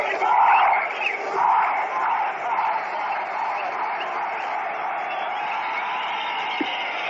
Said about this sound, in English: And while I dare say that the undergraduates in the center field bleacher section of the Polo Grounds, it's difficult competing with this cheering, but we must go on, the show must go on.